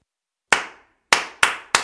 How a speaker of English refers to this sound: Play Clap It Back, all you need to do is clap back the rhythm of the words that I say. So if I say, space is the place, you'll clap.